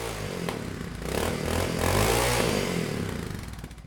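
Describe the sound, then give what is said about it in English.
A Honda XL500S motorcycle engine catches and runs on a June evening in Iceland, a rough, throbbing idle with clattering mechanical noise that swells and revs slightly before settling, fairly loud, with no voices. “it's time for one of Kiele's investments, the Honda XL500S”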